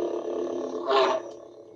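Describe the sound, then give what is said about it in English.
A steady, buzzy electronic hum from a motion-sensing toy that responds when swatted back and forth, rich in layered tones, briefly swelling louder and brighter partway through before settling back to a softer drone. No one speaks. “Kind of got that nice little hum.”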